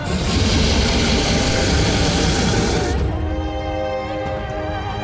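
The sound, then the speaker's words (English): A deep, bellowing dragon roar from somewhere far overhead rumbles loudly for several seconds, a thick, rough blast that shifts into a lower, wavering, growling tone as it trails off. “And from somewhere far overhead, you hear the deep bellowing roar of a dragon.”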